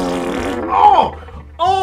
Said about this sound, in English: Oh, why would you fart in my face? Oh, there was a little bit of poop that flew into my nose and my mouth then.